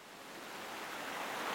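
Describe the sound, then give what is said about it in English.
A steady, dense roar of rushing water from a fast, raging river, swelling slightly louder over its short span with no voices present. “It was a really fast, raging river, and they were having a hard time with it.”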